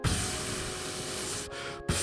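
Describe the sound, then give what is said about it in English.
A long, steady hissing fart, like an aerosol spray can, runs loud for about two seconds, broken by two brief cutoffs near the end. “It sounds like I'm spraying spray paint on a wall.”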